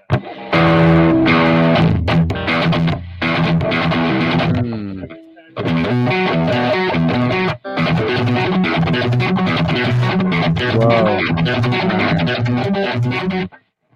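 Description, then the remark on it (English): A distorted electric guitar plays fast, flowing runs of notes using selective picking, a hammer-on followed by two picked notes, loud and sustained, with two brief pauses breaking up the phrases. “Yeah, you're selective about the notes you pick. Selective picking.”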